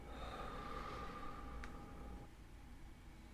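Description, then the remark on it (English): A faint, slow breath drawn in through the nose and then let out during a guided breathing exercise, heard alone over a low, steady background hum with no talking. “If you ever feel comfortable breathing in with your nose and breathing out with your mouth, please do so.”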